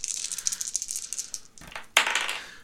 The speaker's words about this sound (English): Okay, I will roll my dice.